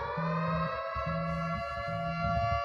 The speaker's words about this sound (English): Is there a siren this week or not? Yeah. I can hear it.